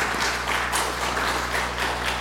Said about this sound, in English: So let's give each other a round of applause.